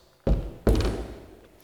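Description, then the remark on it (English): Two heavy, low thuds of spear butts striking the ground, about half a second apart, each loud with a booming tail that lingers and fades. “The thud of spear butts in the ground and that chanting of thousands of people preparing for battle.”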